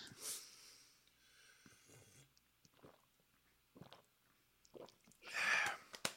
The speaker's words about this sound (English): I need to drink some water.